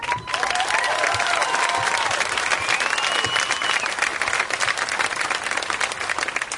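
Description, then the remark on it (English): A large crowd at an outdoor rally by a bridge, before a march across it, claps steadily and loudly for several seconds after a speaker is introduced by the town's chief of police, a dense unbroken patter of hands, with faint whoops and whistles rising through it. “He introduced me, and you clapped.”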